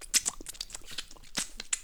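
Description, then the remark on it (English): Someone bites and chews chicken, a quick run of irregular, crisp crunches and wet mouth clicks, fairly quiet, with no talking over it. “Eating my chicken.”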